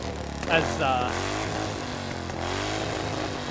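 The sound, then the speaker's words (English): A real motorbike engine revs, its throaty pitch climbing sharply, dipping, then rising again in a steady, loud drone that runs the whole way through. “This is a real motorbike that we recorded.”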